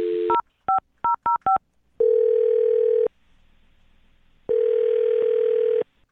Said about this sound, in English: I'm about to dial her phone number. Here we go.